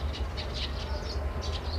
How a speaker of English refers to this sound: It's almost trying to fool you in a sense, the birds chirping, because it's such a peaceful sound, you know. I don't know, when I hear birds chirping, I get a sense of, you know, that rise and shine, good morning, sunny day outside.